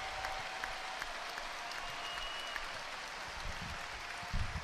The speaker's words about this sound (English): We're having a memorial for Usher. Georgia Wilton, who passed away. She's getting a standing ovation. Her family's getting a standing ovation from the crowd here at Oracle. What a great moment.